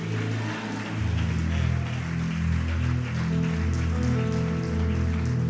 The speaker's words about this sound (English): Come on, lift your voices. Praise God, praise God. Why don't you clap your hands one more time and shout Jesus?